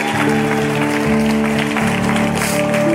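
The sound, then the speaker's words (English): A church audience claps and shouts together to thank God, a steady, dense wash of noise, with sustained organ-like chords holding underneath the whole time. “Church, can we just clap and shout and thank God?”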